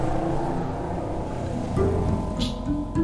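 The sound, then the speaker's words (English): Busy street traffic in the neighborhood of La Sagrada Familia in Barcelona, Spain, a dense, steady rumble of tour buses, taxis and scooters blending together, with a couple of brief tonal honks or engine whines rising out of the din. “La Sagrada Familia, designed by Antoni Gaudí, draws so many people to see it that the neighborhood is congested with tour buses and taxis and scooters.”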